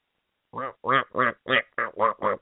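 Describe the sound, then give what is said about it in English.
A person imitates a duck, practicing for a duck calling contest, letting out about eight loud, nasal quacks in a quick, steady rhythm after a brief silence, with no other sounds. “So are you going to enter the duck calling contest this year?”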